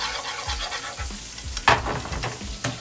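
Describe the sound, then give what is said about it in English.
Eggs being whisked for scrambled eggs in a sizzling pan held slightly above the heat: a steady rhythm of scraping strokes over a constant frying hiss, with one sharper clink of the whisk against the pan partway through. No one speaks. “Now remove your pan from the heat slightly, hang it out above it, and start whisking.”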